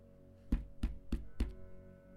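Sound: knocking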